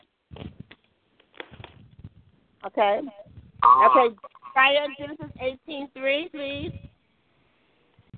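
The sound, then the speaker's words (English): Tinny, telephone-quality voices come through a speakerphone with a hollow, echoey ring, in several bursts over about seven seconds, moderately loud and slightly distorted. “Somebody has a phone on speakerphone. If you take it off speakerphone, the echo will go away.”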